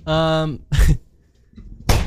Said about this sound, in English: Jeez. He's really slammed the door on the way out.